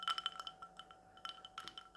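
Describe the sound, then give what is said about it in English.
Ice clinks against the side of a whiskey glass in a few light, bright taps, bunched near the start and again later, fairly quiet, with no voices. “I'm gonna place this glass of whiskey down on you, and you're going to balance it.”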